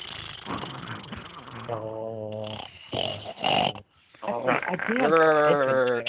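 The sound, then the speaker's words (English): Several voices imitate the raspy, snore-like chattering noise of a cartoon platypus, trading rough throaty rattles and then drawn-out, wavering tones, loud, with a brief pause in the middle. “we're all making these stupid noises right now. Because that's what Perry the Platypus says”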